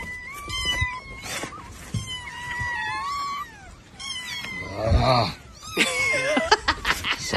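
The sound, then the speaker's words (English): Several kittens in the open trunk of a Honda car meow over one another in a continuous chorus of high, wavering cries as a man tries to put them in and they jump back out, with his voice and some rustling and bumping in the background. “every time he has the trunk open, every time he puts one cat in, another one jumps out.”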